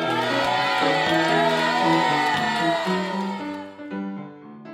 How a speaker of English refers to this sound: This makes the crowd go wild.